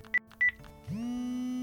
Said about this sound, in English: All of our phones made a noise at once. It was an alert from the school.